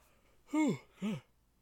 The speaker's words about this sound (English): The yawns are just going to keep coming.